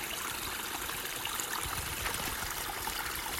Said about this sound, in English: but you come across this stream you can rock hop. I thought that was pretty cool. And here's some sound of that. One of the natural streams coming down.